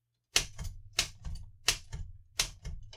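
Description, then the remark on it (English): Typewriter keys, which are sticky, are struck in a quick, uneven series of sharp mechanical clacks, roughly eight or nine hits in three seconds, fairly loud with no one talking. “Sticky keys!”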